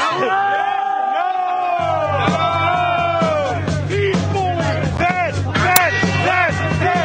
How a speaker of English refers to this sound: They're shouting at him, calling him a Fed because he's telling him to go into the Capitol. This is January 5th. They're telling him to go into the Capitol the next day.